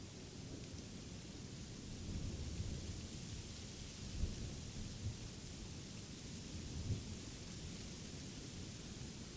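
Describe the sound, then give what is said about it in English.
Steady rain hisses over a continuous low rumble of rolling thunder, with a couple of heavier swells in the rumble; no voices, just an even, enveloping storm. “Deeply rooted in your ability to endure any tempest, as you witness the storm's fury, you realize that an indomitable power resides within you.”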